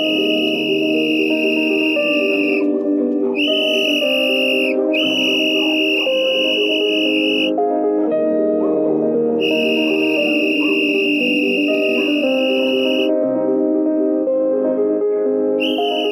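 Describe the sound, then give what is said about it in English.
A loud, piercing whistle in a film scene holds steady high tones in several long bursts with short breaks, layered over a dense, swelling orchestral music bed; no one speaks. “Like, okay, cue the dramatic music, cue the loud whistling, and the emotional looks”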